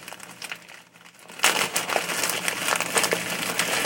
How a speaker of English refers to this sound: I'm going to open this plastic bag of onion.